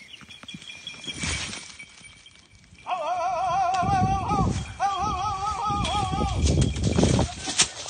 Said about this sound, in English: That's a typical sound a falconer makes to signal to their hawk that an animal they're hunting is getting away. In this case, a gray squirrel.